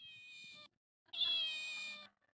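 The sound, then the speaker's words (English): A furry, lifelike toy cat gives two fairly loud meows: a short one, a brief pause, then a longer drawn-out meow with a steady, slightly electronic tone. No one talks over it. “It sounds like a cat.”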